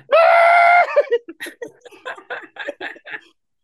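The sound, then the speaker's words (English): A single loud, sustained scream lasting under a second, muffled by a muff on the microphone, followed by a quick run of choppy, breathy bursts like laughter or garbled voices. “You can hear my muffled screams.”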